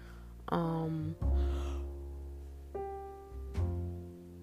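A drawn-out, breathy yawn, with a groaning voiced stretch that rises and falls in pitch before trailing off into a sighing exhale.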